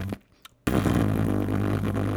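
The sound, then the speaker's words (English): A voice imitates a broken car speaker that buzzes at certain frequencies: a brief faint blip, a short pause, then a loud, raspy, sustained buzz that holds steady until the end. “One of the speakers in your car, at certain frequencies, it starts buzzing, just like...”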